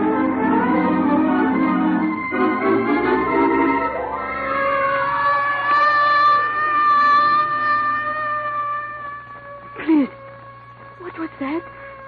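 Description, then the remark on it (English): An ambulance siren wails loudly, its harmonic tone sliding down and back up before settling into a steady high pitch, with a few short, sharp bursts near the end. “The voice of the vehicle of death. Vehicle of death? Ambulance.”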